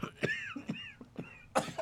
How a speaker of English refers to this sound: From some place that's trying to kill me. It sounds like they're doing it. It sounds like they're winning. Yeah, they are. Man, I'm just coughing up all that fire.